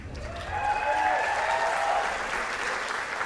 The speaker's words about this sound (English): I don't know if that applause means weird or not. What does that mean?